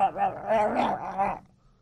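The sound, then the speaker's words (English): A voice imitates ants eating a chicken bone left on a counter with a wordless, gargly chomping sound, wavering and continuous for about a second and a half before falling silent. “You could put a microphone up to the ants on the chicken bone, they'd all be going...”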